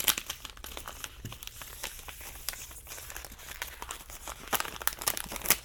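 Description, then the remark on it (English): Thin plastic film being peeled off a phone, a steady stream of soft crinkles and crackles with brief louder rustling bursts, growing busier toward the end, with no voices. “So that's got that peeled off the phone.”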